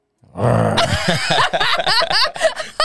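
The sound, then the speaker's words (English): A person imitates a lion's roar, starting with a low throaty growl that swells into a loud, rasping bellow, then breaks into choppy, pulsing vocal bursts. “Yeah, I'm a Leo. Let me hear you roar.”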